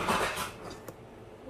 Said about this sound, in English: What just happened? What? I heard clink. I got the muffin thing out. If you know what I mean. It's a muffin tray.